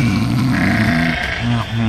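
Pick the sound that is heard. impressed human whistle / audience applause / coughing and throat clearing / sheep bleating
sheep bleating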